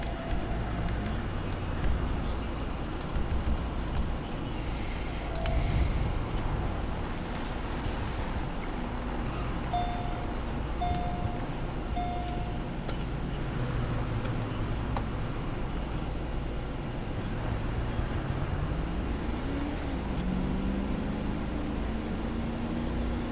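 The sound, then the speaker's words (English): A Corvette sports car engine roars steadily in a driving game, a loud continuous drone whose pitch rises and dips as the car speeds up, with no voices. “Oh, so I'm in the Corvette, so I'm sorry if I'm driving like an idiot.”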